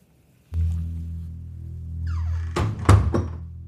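The front door of a house opens with a low rumble and a rising creak as someone walks in, then swings shut with two solid thuds as it latches. No one speaks.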